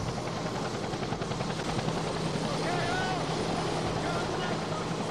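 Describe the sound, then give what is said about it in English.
A helicopter's rotor drones loudly and steadily throughout in a dense churning roar as wounded and dead soldiers on stretchers are loaded onto it, with faint voices and shouting buried underneath amid chaotic activity. “this is soldiers getting loaded onto the chopper, wounded and dead”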